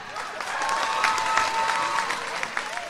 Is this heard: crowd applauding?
yes